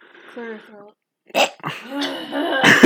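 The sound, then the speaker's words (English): A person clears their throat with a rough, gravelly burst, surrounded by voiced murmuring and another harsh burst near the end. “Clear your throat. There we go.”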